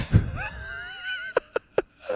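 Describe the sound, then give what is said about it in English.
A person lets out a drawn-out, wavering yawn, the voice sliding in pitch, then three short sharp clicks follow. No one talks. “Dude, how fucked up is yawning?”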